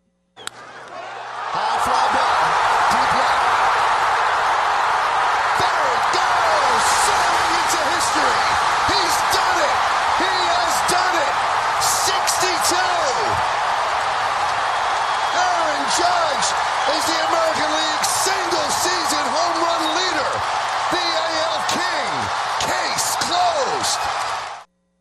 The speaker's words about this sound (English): Interesting. I know sound maven Ari is cringing at the crowd noise. That was what the crowd noise sounded like.